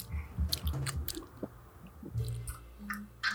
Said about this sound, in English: You sound like a horse chewing hay, bro. What are you doing? Why do you have peanut butter in your mouth now?